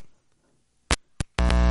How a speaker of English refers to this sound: There was a phone ringing sound in my computer, but nothing coming up on the screen.